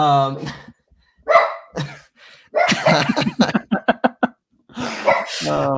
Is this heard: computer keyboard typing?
no